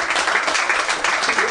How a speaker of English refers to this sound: Are you guys applauding the morning, or did you get the sense he has a heart out?